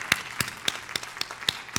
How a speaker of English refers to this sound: And because of that, I'm going to ask all the dads to please stand. And granddads, please stand. Yes, we applaud you.